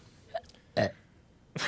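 A short burp with a low, gurgling rasp, framed by brief noisy bursts at the start and end. It is close and moderately loud, with no speech.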